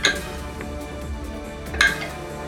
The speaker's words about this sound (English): I've missed just rolling dice. It's fun.